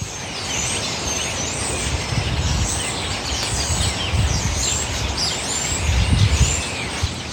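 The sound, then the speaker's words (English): A dense chorus of many birds chirps and sings at once on Pier 3 at 37th, overlapping calls filling the air continuously, with a low rumble of traffic underneath. “It sounded like many choruses of birds singing different songs all at the same time, and they were loud.”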